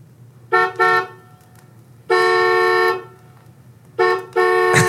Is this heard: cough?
no